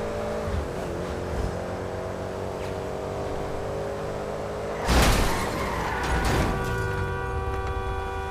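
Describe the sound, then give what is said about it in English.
A video game car engine hums steadily with harmonic drone, then surges in a loud burst of revving and crashing noise around the middle as the car attempts a jump and wrecks, settling back into a continuous engine whine. “Hold on, I'm gonna do the jump. I'm gonna do the jump. Lord, that was not a jump. That was a wreck. My car wrecked, so...”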